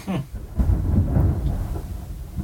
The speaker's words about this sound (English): Could have some good ambiance on this one. Yeah, thunder.